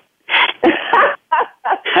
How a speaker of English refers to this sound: I'm coughing.